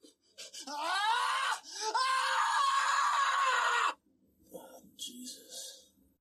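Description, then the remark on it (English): In a film scene, Nicolas Cage's character lets out a long, loud, strained scream as his tooth is pulled, lasting several seconds and cracking and breaking partway through, followed by quieter gasping and muffled sounds. “But you'll be glad to know, at 9 minutes in, Cage, he gets the tooth pulled and we get a nice little acurgus scream to accompany.”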